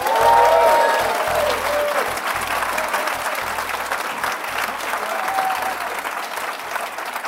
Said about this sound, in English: Terrific round of applause with some sarcasm.